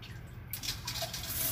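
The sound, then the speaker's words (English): A hissing jet of water from a toilet seat bidet wash, with the water pressure turned on, bursts on abruptly after a brief low rumble and keeps spraying steadily and loudly, shooting far, with no voices. “Hey, that is pretty intense, and it shoots pretty far. Okay, so that was the bidet wash.”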